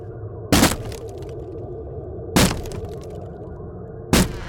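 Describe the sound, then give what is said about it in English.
Three heavy, cracking thuds as a door is rammed with a shoulder, spaced about two seconds apart, each a sharp loud impact with a brief rattle, over a steady low background hum. “Shoulder to bust it open.”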